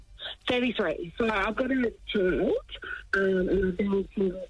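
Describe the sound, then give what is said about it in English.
A voice comes through a narrow, tinny phone line, thin and band-limited, with occasional crackly bursts of noise breaking in over the steady talking. “The phone line's a bit crackly.”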